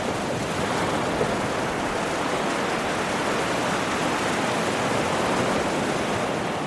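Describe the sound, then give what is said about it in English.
A steady, dense roar of ocean surf at the drowning city of San Luis fills the whole clip, a continuous wash of breaking waves with no distinct individual crashes and no voices. “He looks out at the crashing waves and says, it could even be tonight.”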